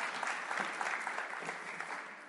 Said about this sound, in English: Everyone a round of applause who joined in. Excellent.